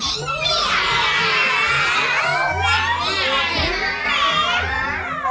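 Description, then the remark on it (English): A group of children playing the black cats team in a Halloween quiz meow together in high, wavering voices, overlapping cat-like cries that rise and fall steadily for several seconds, loud and continuous without a break. “So can I have you all give me some lovely meow?”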